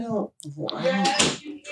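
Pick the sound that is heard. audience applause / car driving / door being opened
door being opened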